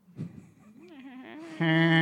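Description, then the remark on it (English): A person imitates a cow's moo with a low, drawn-out voiced sound that wavers upward, then swells into a loud, buzzy held note lasting about two seconds. “You know you wanted to moo when he was doing that too.”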